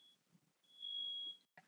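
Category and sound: signal or alarm, smoke alarm beeping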